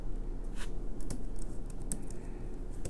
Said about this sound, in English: Again, I got to work on my typing, so stand by.